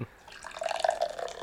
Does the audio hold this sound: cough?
no